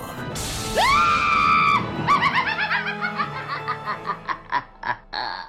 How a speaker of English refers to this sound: Oh my gosh, that scream gets me every single time I hear it. It just instantly puts me in a spooky mood.